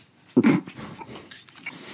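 A dog lets out a sharp, throaty burst, then trails off into quieter low grumbles and soft whining snuffles over the next second or so, with no talking.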